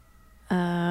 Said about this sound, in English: I'll listen to the sirens.